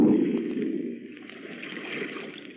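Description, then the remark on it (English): Loud, continuous churning and gurgling of water as a ship slips under the surface, a dense bubbling rush that holds steady for a couple of seconds and eases only slightly, with no voices. “Look, it's sinking. By George, the final plunge. There she goes.”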